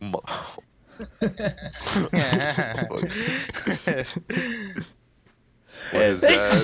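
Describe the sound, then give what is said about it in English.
A single loud sneeze bursts out near the end, following a stretch of voices and breathy vocal sounds. “Bless you.”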